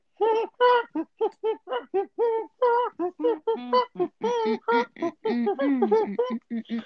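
A rapid, continuous series of harsh, squawking seagull calls, loud, each cry short and overlapping the next for several seconds.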